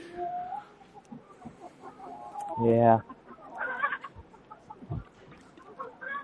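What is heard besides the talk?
chickens clucking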